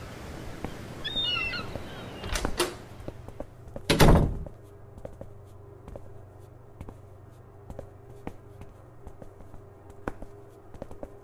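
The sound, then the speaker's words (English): A couple of quick door knocks or clunks, then a loud door slam about a second later, leaving a low steady hum with faint ticking in the background. “Probably just a couple more door sound effects, maybe a lift too.”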